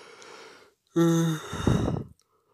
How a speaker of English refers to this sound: Yawning again, and a bunch of things to share that will be interesting.